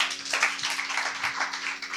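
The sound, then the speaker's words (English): A crowd applauds steadily, a dense wash of many hands clapping at once without a clear rhythm, holding a fairly even loudness throughout, with no voices heard over it. “I thought you'd give that a round of applause.”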